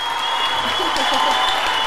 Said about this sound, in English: Libra and Geminis are like this. Let's give us an applause for that.